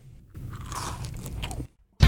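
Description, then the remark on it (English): A crunchy bite into a Twix candy bar, followed by about a second of noisy, crackling chewing, a brief pause, then a sharp, loud crunch at the end. “Right after I eat this Twix.”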